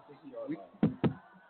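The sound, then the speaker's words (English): Football game commentators knock twice on a wooden surface, two sharp knocks in quick succession, following a brief stretch of murmured talking. “We're knocking on wood here because we haven't had too many problems here.”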